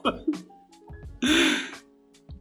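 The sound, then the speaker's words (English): A voice imitates a cough: one loud, rough, breathy burst in the middle, framed by shorter grunting vocal sounds before and after. “coughed.”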